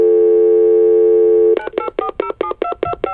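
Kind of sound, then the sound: signal or alarm, telephone call connecting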